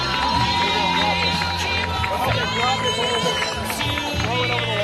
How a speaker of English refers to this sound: And here's the championship trophy going to them. The Eagleville Eagles. Well, I guess you can hear from the crowd reaction.